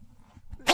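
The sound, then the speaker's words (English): A single sharp, loud sneeze bursts out near the end, after a brief stretch of quiet low rumble. “I'm trying to find a cough button so I can sneeze. I've sneezed.”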